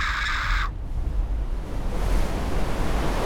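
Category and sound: sound effect, wall of water crashing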